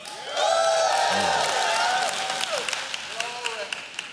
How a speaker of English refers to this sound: Parents, get ready to applause and holler and scream and make noise.